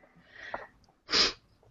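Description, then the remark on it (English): A single sneeze: a brief rising intake of breath, then a short pause and a loud, sharp, hissing burst that quickly fades to quiet. “I was like, everybody's starting to sniffle now.”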